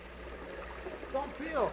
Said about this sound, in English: Oh, my orchards, my beautiful orchards. They are ruined. Look at them, water rushing through them, tearing out the trees, carrying away the fertile land.